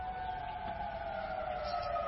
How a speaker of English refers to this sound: You know, we hear that siren, and if you're on the fire department, you respond right now. You know there's someone who needs you for something.